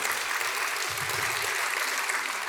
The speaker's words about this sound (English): So thank you for those sponsors. Please, let's give those a round of applause, too.